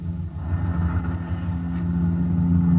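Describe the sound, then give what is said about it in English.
A helicopter flying over Kansas City at night, its engine and rotors making a steady, low, droning hum with a faint pulsing texture that grows slightly louder over a few seconds. No voices. “I was there in a helicopter over Kansas City.”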